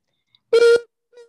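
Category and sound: vocal imitation, voice imitating a siren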